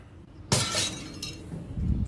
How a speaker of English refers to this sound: It's nothing quite like that unforgettable sound of breaking glass, is there, guys? I mean, what a sound that is.